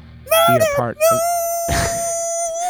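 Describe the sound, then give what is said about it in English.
A rhino call used as the moose sound for the show Murder Moose: a few short grunting pulses give way to a long, steady, high-pitched squealing tone with rich harmonics, broken briefly by a breathy huff partway through. “That's the moose. That's our moose. Whatever. Are you sure it's not like a sea lion or something like that? It's rhino, but it's our moose.”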